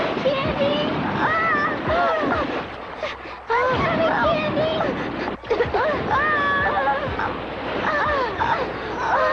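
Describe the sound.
A steady rush of river current, with two girls caught in it, churns throughout, fairly loud, while voices call out and cry over it in agitated bursts.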